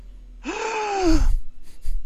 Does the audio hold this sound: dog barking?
no